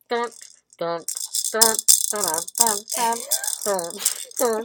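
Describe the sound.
A Jet Maraca shakes in a continuous, bright, hissing rattle that starts after a moment and keeps going throughout, heard over several voices sounding in short bursts, as Happy Birthday is about to be sung.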